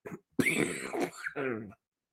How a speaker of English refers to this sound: Excuse me. I got too excited. We went silent there. I had to mute it because I was coughing. I'm sorry.